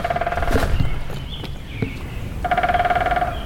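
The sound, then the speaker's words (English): A woodpecker pecks on wood near a wooden bridge on a tree-lined path, in two rapid, buzzing bursts of tapping, one at the start and a longer one near the end, with a quieter gap of scattered knocks between them. “And at work near a wooden bridge was, appropriately so, a woodpecker.”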